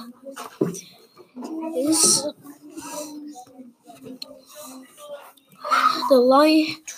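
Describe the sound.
Voices mimic two lions fighting, with rough growls, breathy snarls and a hissing burst, ending in a loud rising roar-like cry. The sounds come in uneven bursts with short pauses between them.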